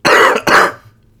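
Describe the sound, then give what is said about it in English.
Two quick, harsh coughs in close succession, loud, from a person still coughing after being sick the week before, followed by a brief fading tail and then quiet. “I mean, I still cough.”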